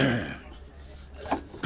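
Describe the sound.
A brief voice at the start gives way to a quiet pause, then a man who smokes coughs twice, short, rough bursts, the second following quickly after the first.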